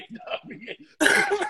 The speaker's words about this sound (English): Matter of fact, this nigga gonna cough while he on live. This nigga's crazy.